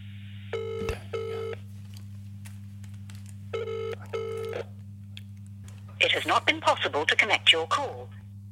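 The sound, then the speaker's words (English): A telephone ringback tone buzzes in two double-pulse rings a few seconds apart over a steady low hum as a call is placed to Pamela Anderson, then a voice starts speaking toward the end. “Is it ringing?”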